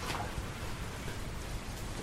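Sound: light rain falling outdoors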